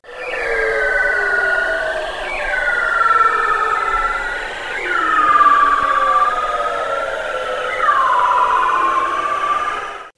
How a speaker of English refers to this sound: This is what a bunch of bearded seals sound like when they're singing together. This audio was taken on land, although the seals sing underwater.